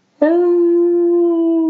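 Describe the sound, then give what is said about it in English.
A person's voice imitates whale song with a single long, steady moaning tone, held loud for over a second with no other sounds around it. “that whale voice, that song”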